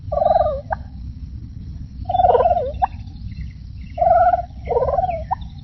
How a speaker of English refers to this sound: Tell us about these turkeys from Farm Sanctuary. Well, these are three big male turkeys that probably weigh about 40 pounds each.